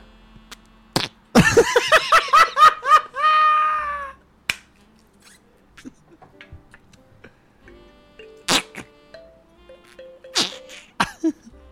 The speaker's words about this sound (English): It's noise putty, it says, and it's called flarp. Oh, it's noise putty, which means it'll make fart sounds.